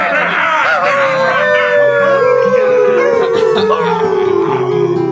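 Several wolves howl together in long, wavering calls that slowly slide downward, loud, layered over a low, steady stepped backing tone throughout.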